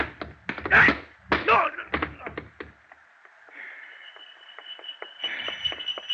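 A fistfight in which one man smashes another in the mouth, knocks him flat and kicks his gun at him: a quick burst of heavy thuds and smacking punches in the first two seconds, then a lull with scattered faint knocks over a thin, steady tone.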